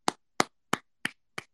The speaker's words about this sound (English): Love it, Emmanuel Quickley. Gotta give you a hand clap.